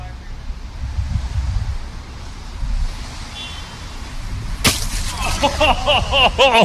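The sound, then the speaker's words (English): Outdoors in steady wind rumble, a spray-painted watermelon tossed at a bullseye lands with a single sharp, heavy thud near the end, then rolls briefly to right next to the bullseye while excited voices rise right after the impact. “Do we count the roll? Because with the roll, she's right next to the bullseye. Not a bad toss.”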